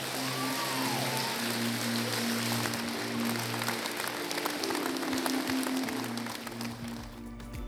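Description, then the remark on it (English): A church audience claps for the Lord in a dense, steady wash of many hands, loud and continuous throughout, with a low sustained musical tone underneath and no talking. “I'll give the Lord a clap.”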